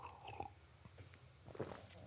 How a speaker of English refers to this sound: I'm going to pause here for another cup of coffee or another sip. Hang on just a sec.